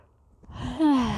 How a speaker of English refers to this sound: Sorry, I keep yawning.